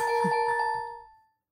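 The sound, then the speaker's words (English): A single bright email notification chime on a phone rings out clear, its bell-like tone sustaining briefly before fading away after about a second. “Check your fucking email. Gotta check your phone.”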